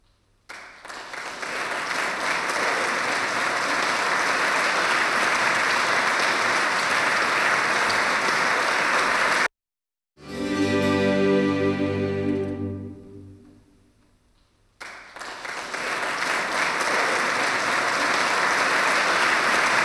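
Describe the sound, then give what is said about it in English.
A concert audience claps loudly and steadily. The applause cuts off for a brief stretch of music, which fades out before the dense clapping picks up again. “Firstly, you hear the original file with a long break between the end of the song and the applause.”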